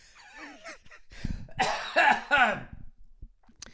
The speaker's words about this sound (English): I quit smoking, but I still have my after pneumonia cough.